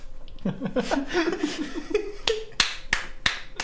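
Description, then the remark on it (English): A burst of laughter gives way to one person applauding for listeners, clapping their hands about four or five crisp, separate claps at a slow, steady pace, fairly loud. “For those of you that can't see, listeners, I'm applauding.”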